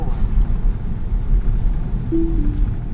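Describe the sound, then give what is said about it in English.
A brief two-note electronic alert chime, stepping down in pitch, sounds once over the steady low rumble of road noise inside a moving car, signalling that autonomous driving and cruise control have ended. “Well, that sound means the autonomous driving has ended.”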